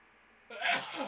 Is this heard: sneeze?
yes